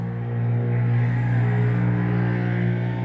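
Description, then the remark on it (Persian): Two loud motorcycles pass by, their rumbling engines droning steadily with a deep, buzzing low hum that swells slightly midway and stays strong throughout. No one speaks. “چه موتور پر سر و صدایی بود، دو تا بودن فکر کنم.”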